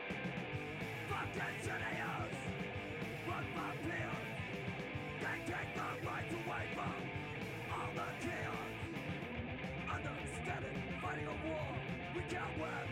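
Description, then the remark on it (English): A dense, loud band mix with a raw, strained male voice yelling from the very start over driving guitars and drums, gravelly throughout, the vocal lines rising in harsh bursts above the steady wall of instruments. “So, like, not only is he yelling right at the start of it, but even, like, in the last one when he started, like, talking, this time he just is, like, gravelly the entire time.”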